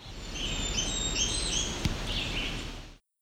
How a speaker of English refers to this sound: This one was also the Blackburnian Warbler, also with Red-Eyed Vireo. Near the end, there was also a Pine Warbler for a bonus.